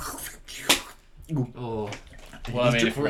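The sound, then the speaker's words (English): A person drinking water: a second of wet, noisy slurping with one sharp gulp, then a voice makes sounds right after, partly overlapping the end of the drinking. “He's drinking water, just so anybody didn't know.”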